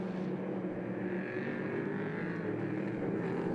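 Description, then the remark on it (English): A steady, droning roar of race car engines on a track in 49-degree weather as an Acura NSX safety car pulls away out of turn 13 before the restart, continuous and fairly loud for the whole stretch, with a faint whining tone riding over the rumble and no talking. “Acura NSX safety car pulls away out of turn 13.”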